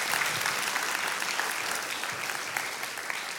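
Sustained applause from an audience, a dense steady patter of many hands clapping at full volume throughout, with no pauses or voices standing out.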